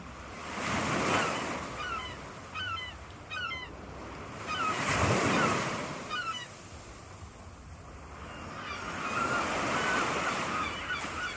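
Seagulls call out repeatedly in short, bright cries over the steady roar of ocean surf, with waves swelling and breaking in slow surges. No one speaks.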